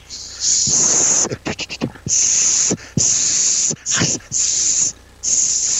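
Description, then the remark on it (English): A voice imitates a rattlesnake's hiss: loud, breathy hissing in several long bursts separated by short pauses, with a quick stuttering flutter partway through. “That's my dad in the old days hitting the rattlesnake before he attacks our dog, Whiskey.”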